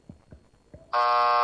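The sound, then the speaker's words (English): A few soft thumps give way to the old WNL buzzer of the Wrestling News Live show, a sudden, loud, sustained electronic buzz with a harsh, rich harmonic tone that holds steady to the end. “That's the WNL buzzer.”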